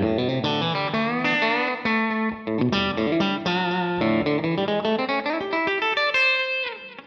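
An electric guitar plays a song intro with an effects-laden tone: a steady run of rich, ringing notes and chords that shift in pitch, sustained and fairly loud throughout, with no voices.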